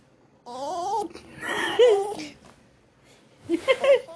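A dog barks and yelps in three short, uneven bursts with quiet gaps between them, the pitched calls wavering up and down.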